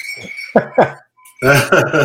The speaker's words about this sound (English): Literally little bells hanging from the doorknob. That's awesome.